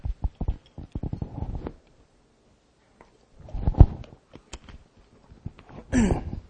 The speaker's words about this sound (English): Let me get a sip of water first.